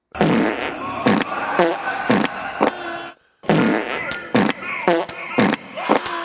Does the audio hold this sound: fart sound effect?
yes